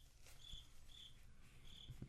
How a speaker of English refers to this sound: Crickets. That's great having the cricket. I know. I like it. Yeah. It makes it even better.